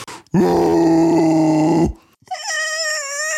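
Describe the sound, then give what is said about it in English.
A person's voice performs a mighty war cry for a character who holds an axe in both hands above her head: a loud, low, strained roar held for about a second and a half, then a brief pause and a higher, wavering cry that trails on. “She lets out a mighty war cry.”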